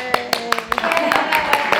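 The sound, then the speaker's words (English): Steady, evenly spaced claps ring out, a light round of applause from a small group at a Racial Justice Now panel discussion event held by Montgomery County NOW, with voices calling and chattering underneath. “Under an applause.”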